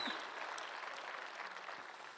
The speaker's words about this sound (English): You're excited. You can clap. Everybody just clap really quick.